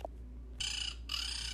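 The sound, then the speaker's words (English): Two harsh, raspy squawks in quick succession from Sylvia, a bird perched on a light fixture, loud, with a brief gap between them and no talking. “Sylvia just squawked.”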